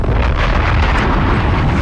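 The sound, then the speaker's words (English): A bomb explosion sound effect: a loud, continuous rumbling roar with heavy low-end boom and broad hiss, holding steady for about two seconds without a sharp attack. No voices. “Bombs, air horn.”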